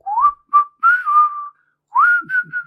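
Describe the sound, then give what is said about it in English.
A person practising for a death metal whistling thing whistles a short, wobbly tune alone, the pitch sliding up and wavering unsteadily between breathy phrases, sounding amateurish and off-key with a pause in the middle. “We meet … in this episode, and she's practicing for a death metal whistling thing. Yes, and she's a horrible whistler.”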